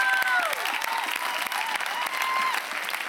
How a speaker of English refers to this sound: Would you give them a hand clap? Yeah, you can stand up. They're not here, but stand up and honor them for who they are.